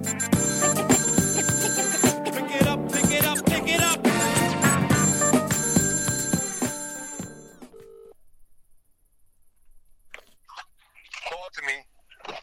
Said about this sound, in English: Phone is ringing.